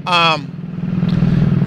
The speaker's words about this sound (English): Helicopter's really loud. I don't know if you guys are picking that up as loud as it sounds to me.